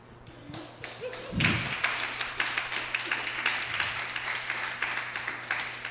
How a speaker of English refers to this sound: Y'all clapped too early. You know, thank y'all though, I appreciate it.